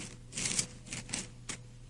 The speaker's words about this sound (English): Now I hear the rustling of the leaves, please. Let's start with verse 25, Ezekiel 36, verse 25.